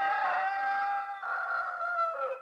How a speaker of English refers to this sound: At that moment, the cock crowed.